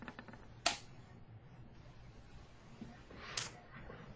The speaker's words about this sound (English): That sounded like a lot of dice. It was.